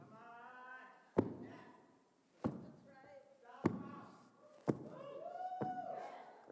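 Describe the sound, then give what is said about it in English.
Heavy stomping footsteps as a person tramples upon a carpet: five loud, dull thuds at uneven intervals of roughly a second, while the person keeps talking between the stomps. “But I'm not only supposed to be treading upon the carpet, I'm supposed to be trampling upon the carpet.”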